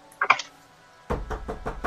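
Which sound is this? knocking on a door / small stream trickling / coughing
knocking on a door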